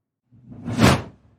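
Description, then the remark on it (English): A single smooth transition swoosh sound effect rises and falls over about a second, building to a bright airy peak before fading out, heard alone. “I was hoping I was going to be here after the swoosh,”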